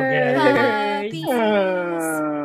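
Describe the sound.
A person mimics a beagle's howl with a loud, drawn-out vocal wail that breaks briefly and rises into a second sustained, wavering howl, with no other sounds.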